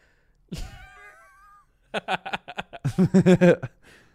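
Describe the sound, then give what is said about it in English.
A cat in a played TikTok video, surprised by its owner coming home early, lets out a drawn-out, wavering meow, followed by a quick run of short, bouncy vocal bursts that grow louder before fading out. “Surprising my cat by coming home early.”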